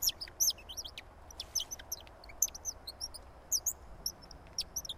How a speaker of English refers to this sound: produces bird-like sounds, which is intended to attract songbirds